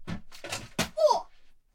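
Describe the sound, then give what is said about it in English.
Three dull, quick thumps of a child banging their foot against something, followed by a short rising child's whimper, then quiet. “Oh, did you just bang your foot?”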